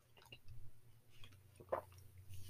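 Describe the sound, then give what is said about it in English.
Someone takes a quick drink from a plastic bottle of water from the French Alps, with soft wet squishes and a short gulp over a low background hum. No one speaks. “I'm telling you, these water bottles can sponsor me and I promote their brand like crazy.”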